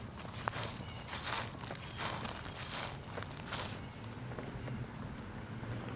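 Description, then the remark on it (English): Footsteps crunch through dry leaves at a steady walking pace while walking in a neighborhood, each step a crisp rustling burst, before the crunching fades out partway through over a low, constant outdoor rumble. “Leaves crunching beneath my feet.”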